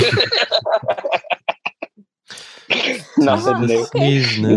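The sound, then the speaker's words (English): A run of short, choppy breaths builds to a sharp, breathy sneeze burst, followed by drawn-out voiced sounds; it seems to be a person mimicking sneezing. “So, this is pretty helpful to kind of know tis the sneezing.”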